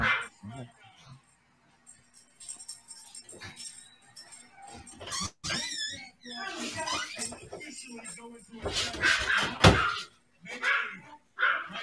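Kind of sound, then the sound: animal, dog barking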